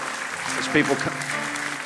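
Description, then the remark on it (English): A standing church audience applauds steadily as people come up to come to Jesus, dense clapping filling the space, with a brief louder swell and some voices mixed into the noise. “Let's give them a great clap as people come up.”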